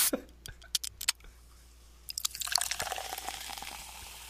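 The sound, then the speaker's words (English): A few sharp clinks and taps, then soda pours into a glass, building into a bright, crackling fizz of bubbles that keeps hissing to the end. No one speaks. “I'm gonna pour myself a soda, if you don't mind.”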